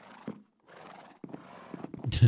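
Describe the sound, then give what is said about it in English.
A horse behind a counter whinnies in a few wavering, breathy bursts, building to a louder, harsher neigh at the end, with no other sounds around it. “Be right with you, says this horse behind the counter.”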